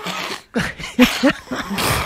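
A quick series of short, breathy sniffs, about five in a row, sharp and fairly loud, with slight vocal sounds mixed in between them.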